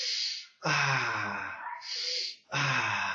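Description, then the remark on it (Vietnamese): Two deep breaths: a slow airy inhale, then a long, loud exhale with a slight voiced sigh, repeated once more. No one speaks. “Nào, hãy cùng hít thở sâu.”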